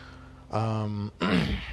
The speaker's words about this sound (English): sorry for clearing my throat.